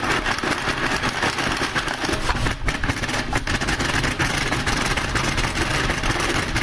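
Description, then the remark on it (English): A braille card shuffler, doing a second shuffle of braille playing cards, runs with a steady, loud mechanical whirr and rattle for several seconds, briefly dipping twice partway through, with no voices. “So they recommend that you do more than one shuffle, so I'm going to do one more.”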